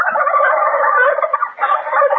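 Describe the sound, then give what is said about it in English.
A wild turkey gobbles loudly, a rapid, warbling rattle that runs almost continuously, breaking off briefly before a second burst. No voices are heard. “Well, it's the bird that you slice on Thanksgiving Day.”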